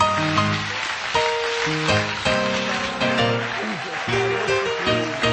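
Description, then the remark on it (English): An audience claps for the Lord in a dense, rain-like patter while sustained instrumental chords and melody play over it, the noise staying loud and even throughout. “So go ahead and just rejoice for a moment and just clap for the Lord, because there is great expectancy in this place.”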